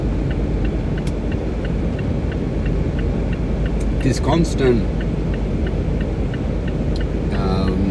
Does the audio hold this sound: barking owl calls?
no